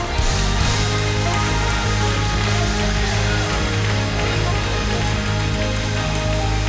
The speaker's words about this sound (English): They're still coming and we're still clapping. Come on. We celebrate it.